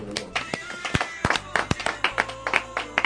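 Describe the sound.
A church audience claps for the Lord during a sermon, in loose, uneven rhythm, with sharp bright hand claps landing several times a second over a steady murmur of voices underneath.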